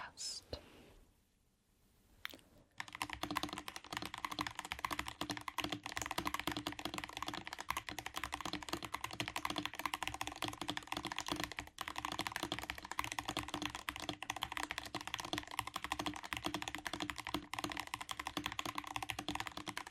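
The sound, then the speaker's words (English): Rapid, continuous clacking of computer keyboard keys during speed typing tests, fairly loud, with a dense unbroken rhythm of fast typing after a brief quiet start and no voices. “Testing & Speed Typing on 4 Keyboards”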